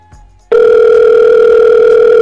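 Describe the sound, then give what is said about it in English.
After a brief near-silent moment, a loud telephone dial tone switches on abruptly as a call is placed on a phone line, holding as a steady, unbroken hum to the end, with no voices. “we're gonna call Squid the 5-star on the phone line right now”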